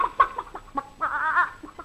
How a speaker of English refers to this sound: We got to feed the chickens. Here, chick, chick, chick, chick, chick, chick, chick, chick. Come on, chick, chick. Here's some corn for you.